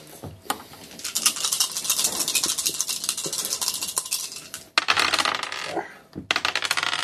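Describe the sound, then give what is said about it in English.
Dice clatter and rattle against a hard surface in a dense burst of bright, clicky impacts, briefly pausing, then rattling twice more before settling. No one speaks. “Go and make a roll.”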